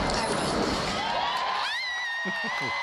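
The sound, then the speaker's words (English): A crowd cheers wildly in a loud, dense roar of voices as Harry and Meghan are proclaimed husband and wife at their wedding. A high, sustained whistle-like tone rises out of the noise partway through, and the cheering then eases slightly. “The crowd goes nuts.”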